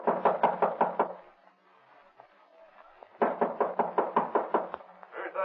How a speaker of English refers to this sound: Open the door. I heard it. Open up. All right, don't break the door down.